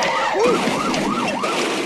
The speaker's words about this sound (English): You want to look out for that police car that's heading right towards you?